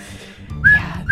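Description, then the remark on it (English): A person imitates with their voice a whistle blown by a school principal in a film as he runs at someone with it in his mouth: two short, shrill, steady tones, the second cut off at the end, over a low rumbling background. “I had to stop the movie for a second because I was like, he's running at her with the whistle in his mouth, blowing the whistle.”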